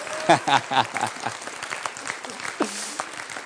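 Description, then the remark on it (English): A church audience applauds for a few seconds, a steady wash of many hands clapping at moderate volume, with a couple of voices calling out briefly near the start and again later. “But you guys can clap for us if you want.”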